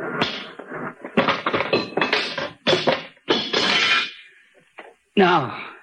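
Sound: machine being smashed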